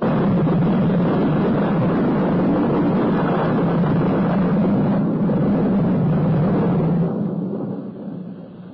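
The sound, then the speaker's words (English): Rolling thunder rumbles loudly and steadily during an electric storm with lightning, a deep, continuous roar that holds for several seconds before tapering off at the end, with no voices. “The thunder's coming. The loudest of all.”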